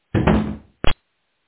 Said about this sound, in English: And just then, the ballroom door bursts open.